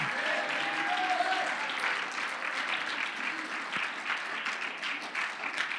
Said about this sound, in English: Oh, clap your hands, everybody, and shout unto God.